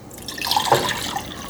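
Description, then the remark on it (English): Water splashes and trickles as it is poured into a small pot to boil tea, a steady stream lasting about a second and a half, with no voices. “And then I'm going to pour in some water into this little pot.”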